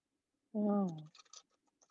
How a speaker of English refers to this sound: I really hope there's like shuffling cards ASMR in here. But, and then your mind and body with the spirit. You shuffle it all together.